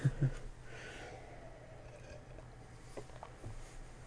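Soft, muffled nose blowing: a couple of low thumps, then a brief breathy hiss of air, with faint rustling afterward and no one talking.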